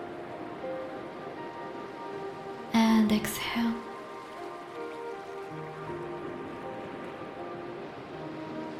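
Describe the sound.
A steady, soft wash of ocean surf runs beneath the whole stretch, with a calm voice speaking briefly and quietly over the continuous rush of waves.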